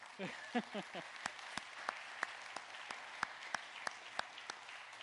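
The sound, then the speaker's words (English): A church audience claps in a thin, steady rhythm, about a dozen sharp claps spaced evenly, following a brief murmur of a voice at the start. “It makes you want to clap, doesn't it?”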